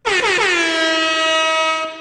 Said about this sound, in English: All right, you know the deal. Airhorn means we're here to make money.